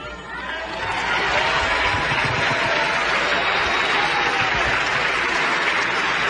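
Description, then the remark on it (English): Sustained applause from a crowd, a dense steady wash of many hands clapping that swells in the first second and holds loud throughout, with faint chatter and chuckles mixed in. “I wasn't expecting all the clapping.”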